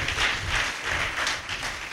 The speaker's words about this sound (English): I also want to thank the teenagers. For the first time, I can hear their voices. It was wonderful. Let's clap more for the teenagers.